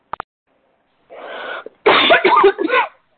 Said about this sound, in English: Goodness, I don't know where that cough is coming from.